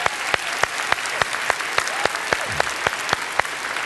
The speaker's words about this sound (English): So I'm going to ask you to give a great hearty hand clap to the literal thousands of people that are watching us right now online around the world. Would you do that?